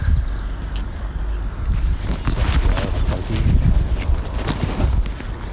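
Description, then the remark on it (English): Steady footsteps crunch along outdoors on a golf course, walking down the 14th hole, a continuous series of soft thuds with a low rumble of wind underneath and no talking. “Walking down the 14th here, acknowledging the crowds who've come out today.”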